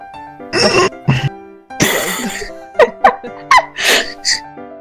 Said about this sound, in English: Pause to cough. Cough. Sorry. I figured I have to too. I've been holding it in. All right. There we go. Get it all out. Guys, come on. Blah. Learn how to breathe. Learn how to hold your coughs in.